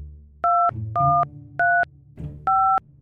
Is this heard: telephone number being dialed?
yes